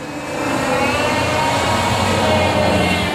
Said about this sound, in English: And wait while the car goes by there. I'm sitting out in my carport to get some nature sounds if possible.